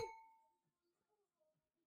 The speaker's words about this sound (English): Should we cheers to our 100th episode?